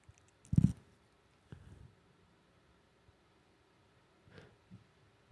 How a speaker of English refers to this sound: You could hear the chewing. I like it.